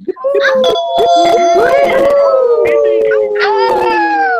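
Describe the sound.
A group of participants on an online call, unmuted on their microphones, howl and wail together in imitation of dogs and cats, their overlapping voices sliding up and down in pitch in one loud, continuous chorus.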